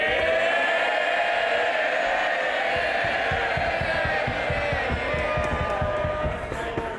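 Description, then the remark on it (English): Members of Parliament in the British House of Commons chamber cheering and shouting loudly and continuously at the start of Prime Minister's Questions, a dense roar of many voices with rhythmic thumping or stamping underneath. “Cheer him by all means, but don't damage.”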